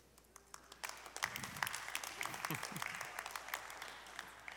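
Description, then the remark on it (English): A crowd at a school graduation breaks into steady applause for groups of students as they exit, many hands clapping in a dense, crackling patter that swells after the first second and holds, with a few low voices murmuring underneath. “I love how we have just been trained, whether it be through all the graduations we've attended or whatever else we do, like when you call groups of people, like you got to applaud for them as they exit.”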